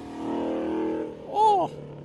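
A Ford Mustang Boss 302 with a V8 engine idles with a deep, steady rumble, then gives one sharp, loud rev that rises and falls as it pulls away.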